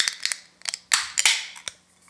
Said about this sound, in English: So speaking of said cans, let's grab our can. Let's grab our glass. Everybody's ready? Yep. And let's open her up.